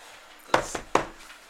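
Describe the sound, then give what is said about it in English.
Two sharp knocks on wood about half a second apart, with a fainter tap between them, each a short, hollow strike that dies away quickly against a quiet background. “Can I knock? One, two. Let's see what that does.”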